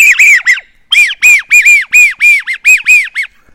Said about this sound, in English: one of my favorite ducks is a widgeon, American widgeon. If you've ever heard that out in the wild